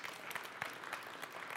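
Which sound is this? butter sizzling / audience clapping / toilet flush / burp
audience clapping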